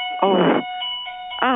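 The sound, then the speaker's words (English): A fire alarm rings with a steady, unbroken electronic tone, fairly loud and continuous, while a voice briefly speaks over it. “That's we have a fire alarm.”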